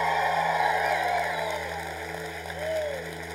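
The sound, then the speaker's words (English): An audience at an evening gathering claps steadily and loudly for several seconds to welcome those who are new or visiting, with scattered cheers and a rising whoop cutting through the dense wash of applause near the end. “If you lifted your hand, you're thinking that's an amazing round of applause if we were on a golf course.”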